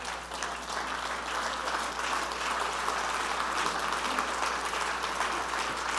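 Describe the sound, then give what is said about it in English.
An audience standing on their feet applauds steadily in thanks to God, a dense wash of many hands clapping at once with no clear rhythm, holding an even, fairly loud level for about six seconds with no voices. “Let's stand to our feet and clap our hands and thank God for His word.”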